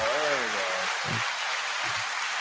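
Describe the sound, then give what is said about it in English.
Steady, dense applause fills the whole stretch as a continuous hiss of clapping, with a man's voice briefly speaking over it at the start and a few low vocal sounds later. “Oh, do I get like an applause or something?”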